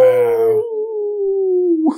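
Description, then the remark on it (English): A person imitates a beagle's howl: one long, loud baying note that holds steady and slowly slides downward in pitch for nearly two seconds before cutting off. “She howled like a beagle at the midnight moon.”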